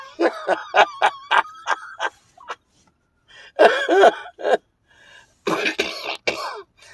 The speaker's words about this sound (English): We're coughing too much.